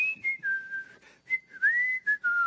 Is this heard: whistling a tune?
yes